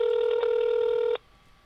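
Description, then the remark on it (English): A single loud, steady electronic telephone tone, like a dialing beep, as a phone call is placed, holds for about a second with a faint click partway through, then cuts off abruptly into near silence. No one speaks. “we're just going to keep calling you until you pick up the phone.”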